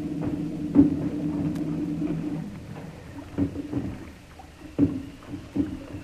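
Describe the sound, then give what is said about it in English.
A small rowboat carrying men comes alongside a ship, oars knocking and water sloshing against hulls, with a steady low engine-like drone underneath and several sharp wooden thumps as it bumps alongside. “All right, you men. Get ready to come aboard. And be mighty careful. Ready with that boat hook, Bosun?”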